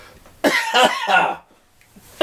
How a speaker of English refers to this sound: Why am I smoking? Why am I coughing? I don't smoke anymore.